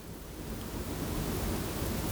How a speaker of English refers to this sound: Hey, skadash skadoosh, is it fucking raining? Yes, it fucking is. It is fucking raining. Don't know if you can hear, probably because I'm talking so loudly.